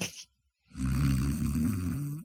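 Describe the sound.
A voice imitates a loud, rattling breathe-in snore, a single sustained throaty inhalation lasting over a second, alone after a brief pause.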